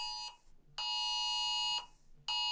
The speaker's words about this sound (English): There seems to be an emergency. Do we have to leave? I don't know. This is on your phone. I apparently am not privy to said emergency. Oh, this is very important. Uh-huh. Snow squall warning at 10:45.